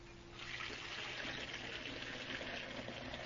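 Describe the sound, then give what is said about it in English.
Water runs steadily from a tap into a tea kettle, a continuous splashing rush that starts after a brief pause and keeps flowing without interruption. “Now, to put some water in the tea kettle.”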